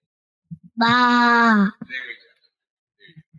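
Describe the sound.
A child playing a little shepherd in a nativity story imitates a sheep's bleat with one loud, sustained, wavering "baa" lasting under a second, followed by a brief breathy sound and soft murmurs.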